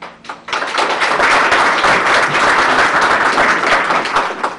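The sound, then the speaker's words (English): An audience at a Frederick County forum bursts into sustained applause for the participants, many hands clapping in a dense, steady wash that holds strong for several seconds before tapering slightly at the end. No one speaks over it. “And for our audience, let's give them one more round of applause right now for their participation, and then hold any additional applause to the end of our forum today.”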